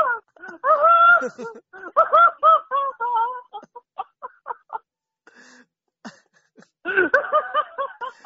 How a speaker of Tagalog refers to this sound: Old school yung businang yun ah. Oh, busina pa.